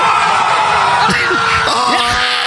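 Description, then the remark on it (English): A loud crowd at a rap battle erupts in cheering, whoops and yelling in reaction to a line, several voices rising and falling in overlapping shouts over a steady wash of noise for a couple of seconds. “I love the crowd reaction.”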